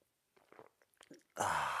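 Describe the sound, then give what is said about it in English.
Soft wet mouth clicks lead into one loud, sustained slurping sip of a drink, with nobody talking. “And join me now for the unparalleled pleasure, the dopamine hit of the day, the turbo simultaneous sip, which comes with a button press for some of you.”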